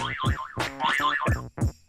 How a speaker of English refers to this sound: Dang, man. These doorbells are popular in this neighborhood. Them zippity things.